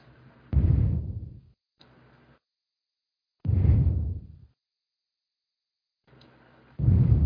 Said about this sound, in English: stop breathing into your mic.